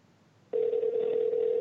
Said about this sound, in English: Call me. Just call. Make the phone noise. Call me. No, your phone's. No, why is your phone ring like that?